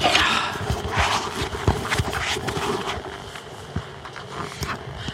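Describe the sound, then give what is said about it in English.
A steady series of hard, clopping footsteps of someone approaching, each step a sharp knock over a dull background rumble, with no one speaking. “I hear someone coming.”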